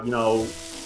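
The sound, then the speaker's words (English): Food sizzles on a grill in a steady, crackling hiss, briefly overlaid at the start by a pitched tone that slides downward before the frying noise carries on alone. “7 o'clock at night, I fire up the grill. And I just start screaming. I start cooking food, and I start screaming.”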